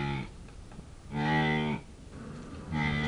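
Mooing calls from a female animal that uses its giant nose as a resonating chamber for its calls: three drawn-out harmonic lows in a row, with the middle one longest and loudest. Clear, with no talking.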